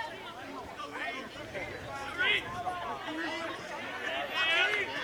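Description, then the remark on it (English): A steady murmur of a large stadium crowd at a baseball game, many overlapping voices blending into a dense babble with a few louder swells of excitement rising and falling throughout. “Boy, this crowd, you can feel it.”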